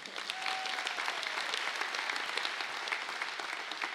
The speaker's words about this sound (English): So thank you. Let's give a clap for him.